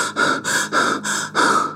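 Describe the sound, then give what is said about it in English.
Fast, panicked breathing with sharp gasps, about five or six rapid breaths in under two seconds, loud, with no talking; Hissyfit in a heightened state of alarm as he sinks into a dark sinkhole of wet sand. “He was in a heightened state of alarm, and his breathing was fast.”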